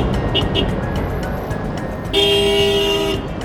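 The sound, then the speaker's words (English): Car horns honk amid a steady rumble of traffic in a jam on narrow mountain roads crowded with visiting tourists, with a couple of faint toots before one loud, sustained blast near the end. “And this all leads to lots of traffic jams, 塞车.”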